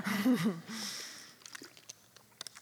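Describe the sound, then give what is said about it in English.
A short hummed vocal sound, then quiet sipping from a glass: a few soft, wet mouth clicks and small gulps spaced irregularly over about a second. “Let me have a sip of water and then I'll encourage you.”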